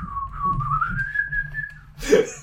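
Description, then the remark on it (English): A person whistles the tune Dixie, a short, wavering melody that glides slowly upward in pitch over a low background murmur, then breaks off into a brief, louder burst of breathy noise. “You are, ironically, Whistling Dixie, just...”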